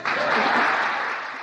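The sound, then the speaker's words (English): A burst of audience applause after a line in a political speech, dense steady clapping from many hands that holds strong for about a second and then begins to thin and fade. “I think that's an applause line.”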